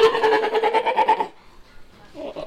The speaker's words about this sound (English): what kind of animal makes that sound? That's a sea lion. Or an elephant seal. I can't never remember the difference.